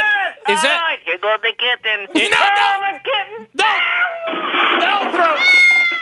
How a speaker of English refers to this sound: Throw a cat? The cat has been thrown.